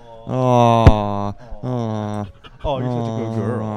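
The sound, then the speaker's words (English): An excited female dog named Timber whimpers and whines in three long, drawn-out, wavering cries with short pauses between them. “We're going to get invaded by a dog.”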